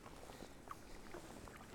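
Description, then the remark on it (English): A kayak paddles through calm water toward a landing stage beneath mountains, under patchy cloud and sunlight, soft dipping strokes and gentle splashes over a steady wash of water and light wind. “Just paddling up to a landing stage.”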